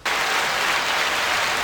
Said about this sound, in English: We got clapping. That's really good.